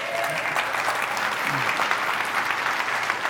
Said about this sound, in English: I'm not going to make you stand up, but if there's a senior around there, around you, can you look at them and make them feel the love? And can we just like clap for them or something?